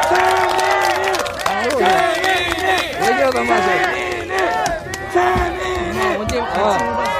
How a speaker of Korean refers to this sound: 그리고 우리 최민희 의원님 오셨군요. 전 의원님 박수 한번 주십시오.